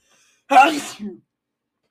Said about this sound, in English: And with that sneeze, we'll get right into it.